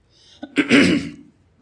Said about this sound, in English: You don't have to clear your throat on my behalf. I'll do it for me.